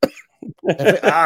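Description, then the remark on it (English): A sharp cough bursts out at the start, followed by a brief throaty sound and then a voice talking loudly and continuously. “I ruined it with my cough.”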